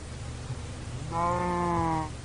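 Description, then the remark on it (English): A single drawn-out cow moo from a video game on a game server, lasting about a second over a low steady background hum, clear, with no talking, as the player slaughters about 15 cows around him. “So when I got in, first looked in this world to see if it was acceptable, I had about 15 cows around me, so I slaughtered them all.”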